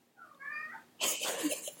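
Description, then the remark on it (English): A cat lets out a single drawn-out meow, followed right after by a louder burst of scraping, rattling noise as the cat tries to knock down paintings on the wall. “My cat's trying to knock down all the paintings right now.”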